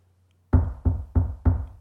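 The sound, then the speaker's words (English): Four firm knocks on a door in quick, steady succession, each with a solid low thud and short ring, following a brief moment of near silence. No voices. “It was the door. Who could it be?”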